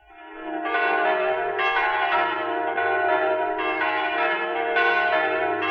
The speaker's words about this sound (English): Those are the bells of the Church of the Holy Sepulchre in Jerusalem.